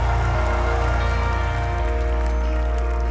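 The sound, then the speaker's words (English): A church audience claps and cheers loudly for Jesus, a dense, steady wash of applause lasting the full few seconds, with a low sustained musical hum underneath and no clear speech. “Well, give Jesus one more big shout, everybody.”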